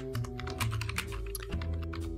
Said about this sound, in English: what are you typing away there,